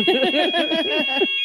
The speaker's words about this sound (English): Alarm again, guys.